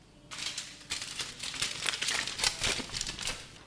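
Aluminum foil crinkles and crumples in a steady run of crisp, rustling bursts as it covers a tray of food to be frozen, its sides crumpled along the rim to make it snug, with no one talking.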